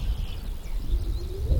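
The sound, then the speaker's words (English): Wild birds call outdoors: faint, thin chirps drift while a low, dove-like coo rises near the end, all over a steady rumble of wind or ambient noise. “It's really pretty, just standing here listening to the birds.”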